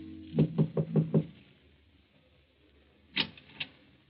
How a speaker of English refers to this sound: Then one night, Hans Minkler makes his way through the maze of Paris traffic and knocks at the door of number 16, Rue de Roche.